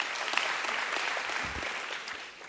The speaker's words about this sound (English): You can clap for that.